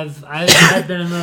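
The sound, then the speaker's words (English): One sharp cough from a person getting over an illness bursts out mid-clip, loud and breathy, with voiced sounds just before and after it. “You're coughing, you're suffering”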